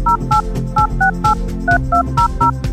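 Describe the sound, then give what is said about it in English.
A quick run of about nine telephone touch tones, short two-pitch beeps dialed in a brisk, slightly uneven rhythm, playing clearly over a steady low musical bed with no talking. “Those touch tones remind me to remind you that we have veterinarians on call at Dog Cancer Answers on our listener line.”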